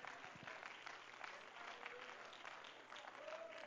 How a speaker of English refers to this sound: Come on, clap your hands and let's praise the Lord again.